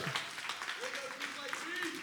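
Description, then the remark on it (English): An audience claps steadily for the Kids Life team, a dense crackle of many hands at moderate loudness, with a few voices whooping and cheering over the applause. “Those who are clapping, those who are rejoicing are the ones who are experiencing that in their kids' life.”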